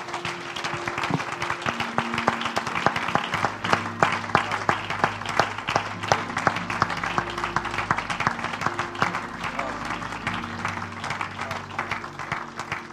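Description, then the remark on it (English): A church audience claps in praise of God steadily for about thirteen seconds, a dense, even patter of many hands, while sustained organ or keyboard chords hold underneath. “Let's give him a hand clap of praise in this house.”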